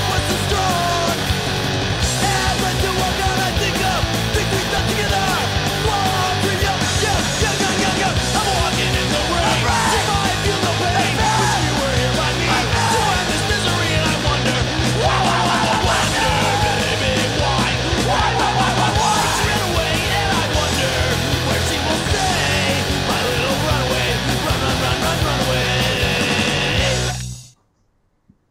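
A punk rock band tears through an upbeat pop tune with shouted vocals, distorted guitars and pounding drums, loud and dense throughout before stopping abruptly near the end.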